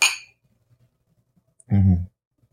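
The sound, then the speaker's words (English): A single bright clink of wine glasses touching in a toast rings out at the start and fades quickly, followed by quiet and then a brief low murmured voice. “Oh, you want me to drink some wine? Mm-hmm. Okay, yeah. Cheers.”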